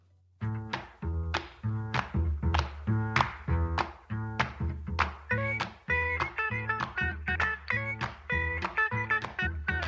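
A skiffle-style rock and roll intro: bouncy, steadily pulsing chords with a thumping bass line, the rhythm quickening partway through, loud and instrumental with no singing.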